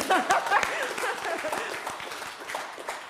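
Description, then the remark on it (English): An audience at a morning worship service breaks into steady applause, dense overlapping claps, with a few voices murmuring and calling out underneath. “Let's give a big, I don't know what they call it, hands of praise, whatever. Let's clap.”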